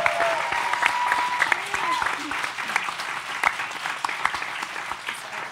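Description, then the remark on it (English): A crowd claps in a sustained, dense round of applause for a show's guest actors, writers, artists and social media managers, a steady wash of overlapping hand claps with a few sharper individual claps and faint whistles, holding at an even loudness throughout. “So all of the people from the teams, please can you give them a big round of applause as well?”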